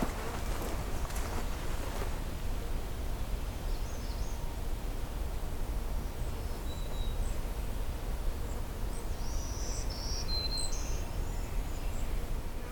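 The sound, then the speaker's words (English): Cedar waxwings give faint, thin, high-pitched calls overhead, a few short lisping notes in the latter half, over a steady outdoor hiss with some rustling near the start. “Some cedar waxwings just went overhead.”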